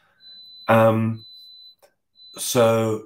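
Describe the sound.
A thin, high-pitched electronic tone beeps repeatedly in long steady pulses, fairly faint, at one end of a phone call, while a voice speaks loudly over it.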